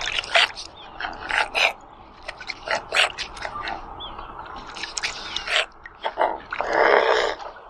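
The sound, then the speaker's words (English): A mute swan, a big white waterfowl from Eurasia, gives a series of short, rough, grunty calls in an irregular rhythm, soft and breathy, ending with a longer hoarse, hissing note. “Next up is this little grunty call.”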